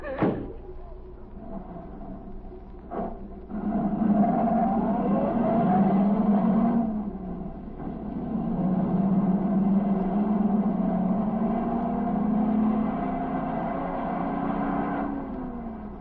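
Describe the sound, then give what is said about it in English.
A car door thuds shut, then an engine starts and hums steadily, its pitch rising and falling as the car pulls away and drives on. “Now you do as I say. Get in the car.”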